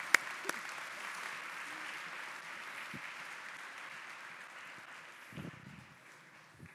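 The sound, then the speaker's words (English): Steady audience applause, a dense wash of many hands clapping that holds for several seconds and slowly thins out toward the end, with a few sharper individual claps standing out early. “Okay, let's hear it for these guys. Thanks so much.”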